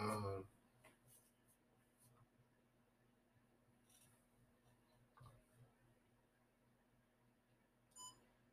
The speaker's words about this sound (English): Sorry, y'all. If y'all hear that beeping, don't worry about that. It's a camera.